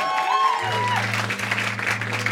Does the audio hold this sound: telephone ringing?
no